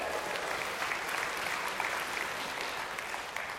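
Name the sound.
church audience applause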